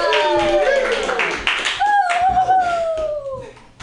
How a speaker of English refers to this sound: Keep clapping your hands together